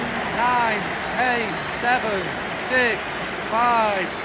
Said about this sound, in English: And 70,000 people shouting, "You Scouse bastards." Oh, and now we want Blazers out from the Stretford end.